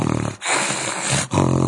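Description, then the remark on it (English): Someone imitates a growl by making a rough, snoring rasp with their head tilted toward a trash can and a microphone in front: two loud, buzzy bursts with a breathy rush between them. No talking. “You put the microphone in front of you, and then you tilt your head towards the trash can. Uh-huh. And then you do a snoring sound.”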